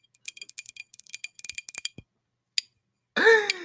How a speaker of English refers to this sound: ASMR for my wine glass and my nails.